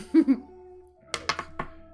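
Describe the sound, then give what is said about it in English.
Dice clatter across a table in a quick burst of four or five sharp, hard knocks, just after a brief voiced sound and with a low steady hum underneath. “And the dice are going everywhere now.”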